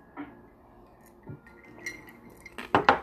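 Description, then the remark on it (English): Ice clinks softly against a glass during a sip, then two loud, sharp crunches of ice being chewed close together at the end. No one speaks. “And I don't mean to chew this ice.”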